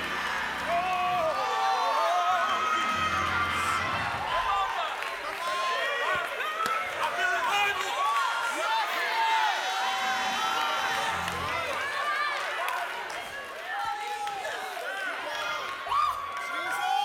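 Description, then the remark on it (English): A large audience in Atlanta shouts "Jesus" and cheers all at once, a dense, sustained roar of many overlapping voices that stays loud for the whole stretch, with scattered higher cries rising above it. “Somebody make the devil mad and just shout Jesus.”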